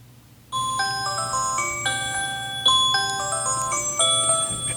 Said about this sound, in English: I put the timer on my computer for 3 hours, and in just 3 hours, the timer on my phone to turn off the ring. And 3 hours exactly on the nose, this phone call comes in.